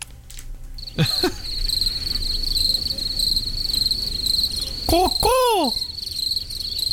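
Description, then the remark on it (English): Cricket chirping slowed down to 5% of its speed into an eerie, choir-like drone: a steady high ringing tone with a few loud swooping, descending wails, no voices. “That's a cricket sound at 5% the speed.”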